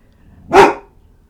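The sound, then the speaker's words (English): A single short, loud bark from a female dog rings out, a sharp burst with a quick rise and fade and nothing else around it. “and when she barks, you can. It quivers.”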